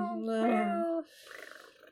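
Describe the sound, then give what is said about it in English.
A single drawn-out, tonal cat meow lasting about a second, fairly loud, comes from one of a group of cats delivered to a door as a bouquet. A softer, rough, fluttering sound like purring or breathy noise follows. “But we just deliver a bouquet of cats.”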